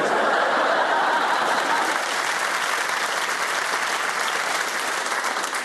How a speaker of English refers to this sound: I love the way the first clap of the night is for yourselves. How brilliant was that? Oh, well done us.